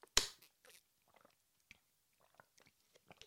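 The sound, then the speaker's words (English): Someone chewing olives and smoked Gouda: one sharp, loud click at the start, then a run of faint, scattered wet smacks and soft mouth clicks, with no talking. “I was choking on the olives and smoked Gouda.”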